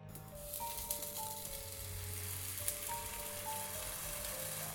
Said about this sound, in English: the fry cook stepped away from his station, leaving a greasy pile of beef and vegetables sizzling on the pan.